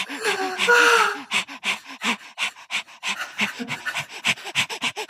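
A dog pants rapidly and steadily, quick rhythmic breaths following a brief whine-like vocal sound at the start.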